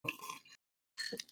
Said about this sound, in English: Oh my, all of a sudden I just had to burp. Let me grab a drink here.